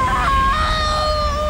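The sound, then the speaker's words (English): A woman lets out a loud, sustained scream of pain, high-pitched and strained, holding steady for over a second without a break: the character Ashi screaming as Jack's strike burns her and the blackness fades from her face. “She screams in pain and the blackness fades away around her face to reveal Ashi's face.”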